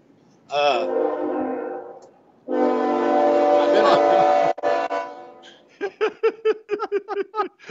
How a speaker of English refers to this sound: There's a train getting ready to go by. You can probably hear it.